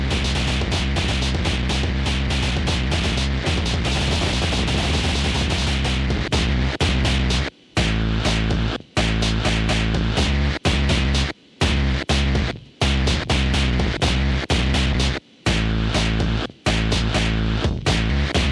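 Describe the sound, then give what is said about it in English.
A loud, gritty synth tone heavily saturated by multiband distortion, buzzing continuously before breaking into choppy bursts with abrupt silent gaps in the second half. No one speaks. “I'm here to say that the four-band distortion is a really good thing.”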